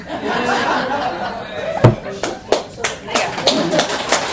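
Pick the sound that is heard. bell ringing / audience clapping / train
audience clapping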